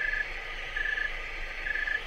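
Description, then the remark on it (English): A snowy tree cricket chirping slowly in the cold: three steady, high, ringing trills spaced widely apart, with a faint hiss of background noise between them and no voices. “The snowy tree cricket is sometimes called a thermometer cricket because it has a very predictable chirp rate relative to temperature.”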